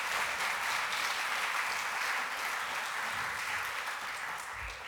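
A crowd applauds as a guest is introduced, steadily, a dense wash of many hands clapping at an even, loud level throughout, easing slightly toward the end, with no talking over it.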